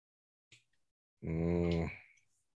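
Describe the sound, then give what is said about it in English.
A person lets out one long, groaning yawn, voiced and drawn out for nearly a second before trailing off, with a brief breath just before it and no talking. “you're not going to start yawning on the podcast because you ain't going to make me start yawning”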